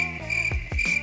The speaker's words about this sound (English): You hear those crickets in the background?